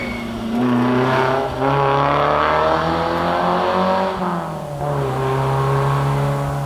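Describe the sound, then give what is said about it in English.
An old Alfa Romeo's highly tuned engine revs loudly and steadily as it drives past, its pitch rising and falling through gear changes, with no talking over it. “And even hear that highly tuned engine over the rust.”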